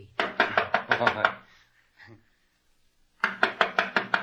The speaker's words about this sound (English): I'll knock on the door.